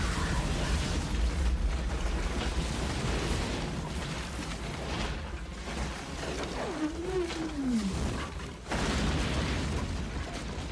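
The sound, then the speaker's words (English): A loud, sustained gasoline explosion with a huge fireball rumbles throughout, with dubbed-in wildcat roars rising and falling over the blast near the end. No one speaks. “They even dub some, like, wildcat noises over top.”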